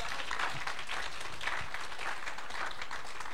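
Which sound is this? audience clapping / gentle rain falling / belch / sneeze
audience clapping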